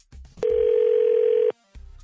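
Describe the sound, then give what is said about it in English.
A phone line rings out as a call is placed, with one steady, mid-pitched electronic ring tone lasting about a second, loud and alone, framed by soft low rumbles before and after. “Let's give her a call.”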